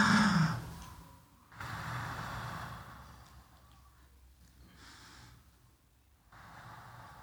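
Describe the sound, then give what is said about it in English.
Slow, deep breaths drawn in and let out, with soft airy inhales and sighing exhales repeating about three times at an unhurried pace, fairly quiet, with no talking. “We can do it in a very special and easy way just by stopping and breathing.”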